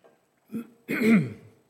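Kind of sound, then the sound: human body sound, cough and throat clearing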